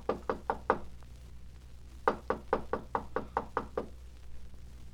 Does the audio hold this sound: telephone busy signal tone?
no